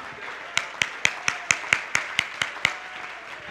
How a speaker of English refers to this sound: Stand to your feet right now and clap your hands. Come on, somebody shout, God is working for my good.